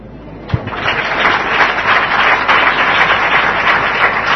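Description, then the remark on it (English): A church audience bursts into sustained applause for a woman who gave her life to Christ, dense overlapping clapping that swells after a sharp thump at the start and holds steady and loud throughout, with no speech over it. “It's good, you'll be clapping for her.”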